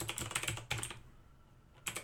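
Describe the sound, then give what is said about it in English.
Rapid clicky keystrokes from a mechanical keyboard with MX Blue switches, fired off in two dense bursts, a short pause, then another flurry at the end, crisp with no talking. “You're going to hear my MX Blue keyboard for 5 seconds, so bear with me.”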